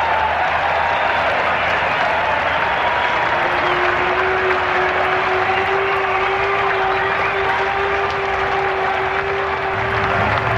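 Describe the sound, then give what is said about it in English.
Sustained applause from a large cricket crowd after Willis, facing Sir Richard Hadlee, is caught at slip by Howarth; a dense, steady wash of clapping fills the whole stretch without fading, with a faint continuous tone underneath. No one speaks. “Long applause you hear, and I don't know whether you can hear me about this.”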